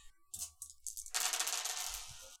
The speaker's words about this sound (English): Okay. Give me just a regular bronze roll. Okay. So five dice.